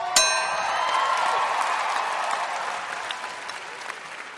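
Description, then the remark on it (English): A studio audience breaks into loud, dense applause welcoming a guest. It holds steady for several seconds before thinning slightly at the end, with a brief ringing chime at the very start. No one speaks. “I don't get that type of applause.”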